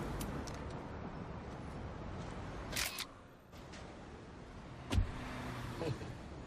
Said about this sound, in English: He plays Prop Joe. The man who just drove away in the car.